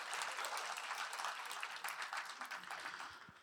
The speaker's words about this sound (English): That girl and I today, we're married. Yeah, you can clap. It's fine.